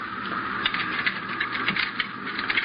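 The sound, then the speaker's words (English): Keys rattle and a lock clicks as a door is unlocked and opened, a steady run of small metallic clicks and scrapes with no voices. “Now here, pick up these keys and open that door.”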